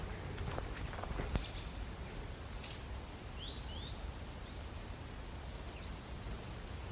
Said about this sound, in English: Come to an area where there are loads of birds. There are definitely chaffinches here.